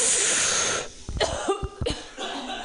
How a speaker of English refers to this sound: I don't know how those cookies made me cough, but whatever.